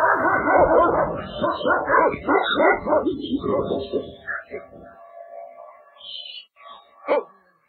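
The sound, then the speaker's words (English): A dog barks and yips in a rapid flurry, the calls trailing off into softer whines before one last sharp bark rings out near the end. “Oh, a dog. A dog.”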